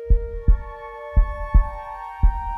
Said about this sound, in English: When he gets off, though, more heartbeat.